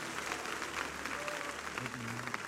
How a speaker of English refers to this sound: One more time, let's clap our hands to Jesus.